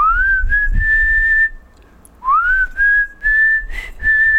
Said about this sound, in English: It might be the worst whistle of all time.